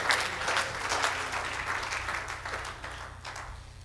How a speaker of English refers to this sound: If you believe that here today, won't you clap your hands unto the Lord as you're seated?